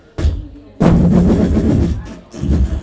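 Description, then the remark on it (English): A voice imitates explosive diarrhea: a short blurt, then a long, loud, sputtering blast of harsh noise, followed by one more shorter burst. “The Dalmatian dog, you do the sound effect of...”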